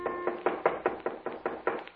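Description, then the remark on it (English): A steady run of about nine knocks on a wooden cabin door at about 11 o'clock at night, evenly spaced and fairly quick, each a dull hollow rap at moderate volume with no voices present. “It was about 11 o'clock, and we'd started to go to bed, intending to get up as early as possible the next morning when there was a knock on the door.”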